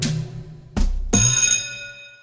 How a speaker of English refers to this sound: Yeah, the school bell is not everyone's favorite type of bell.